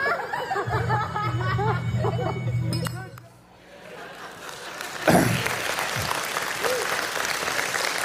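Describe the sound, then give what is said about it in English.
A crowd murmurs and talks, then after a short lull an audience breaks into steady applause, a dense crackling wash of many hands clapping that carries on to the end. “So, I appreciate the sympathy applause.”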